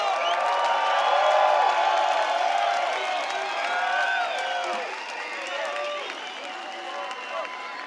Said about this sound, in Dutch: En deze koning was onze afsluiter. Mag ik een gigantisch applaus.